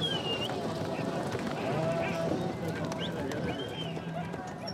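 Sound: horses galloping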